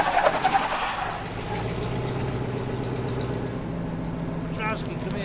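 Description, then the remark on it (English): A truck engine rumbles steadily as the truck pulls up to park, a low, even idle-like drone that holds for several seconds, with faint indistinct voice sounds near the start. “Okay, yeah, park the truck.”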